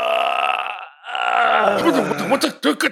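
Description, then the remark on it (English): A loud, drawn-out belch on waking after a stout drink, with a deep, throaty roar, briefly breaking off before continuing and ending in a series of choppy, gurgling bursts. No one talks. “You hear … do this loud roar of like a really nice wake up after a good drink.”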